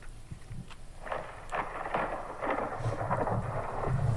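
Deep thunder rumbles steadily for several seconds, swelling slightly toward the end, with soft crackling bursts layered over the low roar and a faint rain-like hiss; no one speaks.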